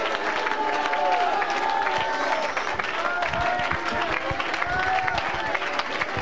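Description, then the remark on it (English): An audience claps hands continuously in praise of God, a dense, steady wash of clapping with crowd voices and faint cheering mixed in, fairly loud throughout. “If you can't clap your hands, all ye people, you need to ask yourself why.”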